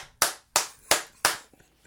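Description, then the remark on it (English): Four sharp hand claps, made to sync video and audio when editing, in a steady, evenly spaced rhythm, each a crisp bright smack that fades quickly, with no talking. “I clap so that when I edit the videos, I can sync them up.”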